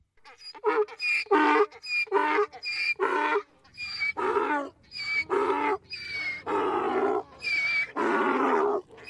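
A donkey brays loudly in a long run of harsh, rhythmic hee-haw cycles, the short honking bursts gradually stretching into longer, strained groaning calls, with no voices.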